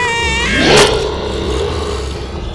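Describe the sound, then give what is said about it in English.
A car engine whines and revs up sharply in a loud burst, then settles into a steady low rumble as the vehicle pulls away. No one speaks. “We got into the car and drove to a motel.”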